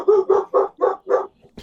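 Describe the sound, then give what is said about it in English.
Dogs bark in a quick, steady run of five loud, evenly spaced barks, followed by a brief faint sound and a sharp click. No one speaks. “Sorry, I'm gonna put it on mute because my dogs want to kill.”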